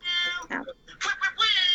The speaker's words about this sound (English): Oh my gosh, is that your sound? That's the timer. Sound like a cat.